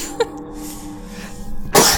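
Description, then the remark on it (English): A single sharp sneeze bursts out near the end, loud, after a brief quieter intake and a low steady background hum. “Bless you.”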